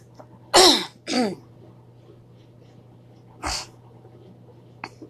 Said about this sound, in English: A lot of my coughing is due to the forest fires that was recently here in New Mexico. It's the things that are coming from California and Arizona.